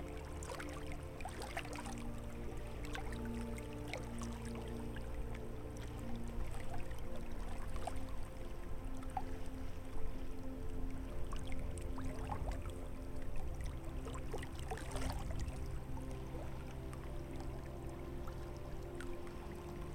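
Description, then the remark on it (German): Gentle waves lap softly against the shore of a sunlit mountain lake framed by trees, with small irregular splashes over a steady low wash of water. The sound is continuous and calm, and no one speaks. “Das Sonnenlicht schimmert auf der Wasseroberfläche, glitzert und funkelt mit jedem einzelnen Wellenschlag.”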